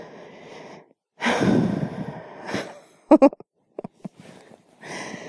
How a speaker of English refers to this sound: Because, well, this has actually backfired because now I've made myself tired. Now I've made myself yawn.